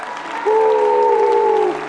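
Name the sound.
audience clapping hands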